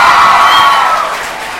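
A crowd applauds with dense, steady clapping mixed with cheers and whoops, loud throughout and easing off slightly toward the end.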